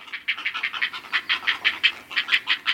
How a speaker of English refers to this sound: Ah, music to the heron parents' ears. Healthy, growing fledglings ready to take off.